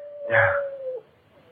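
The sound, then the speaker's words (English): A single drawn-out dog howl holds one steady pitch for about a second, with a brief rougher bark-like burst near its start, with no talking. “The dog again.”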